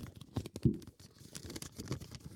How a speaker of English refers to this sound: All right, here we go, ladies and gentlemen. Let me open up the paper.